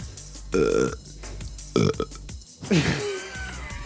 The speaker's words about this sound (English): You seen that? 32 burps.